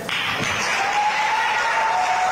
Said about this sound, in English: Okay, so I'm guessing the applause is for her because there were a lot of pro-recall folks there at the Santa Rosa County Legislative Delegation meeting.